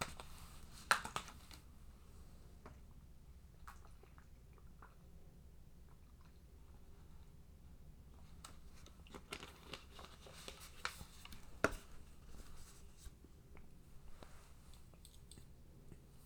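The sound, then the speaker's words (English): Quiet mouth sounds of someone drinking water close to the microphone: soft wet clicks and gulps scattered over several seconds, with a few sharper swallows standing out against a low background hum. “Ooh, I need some water.”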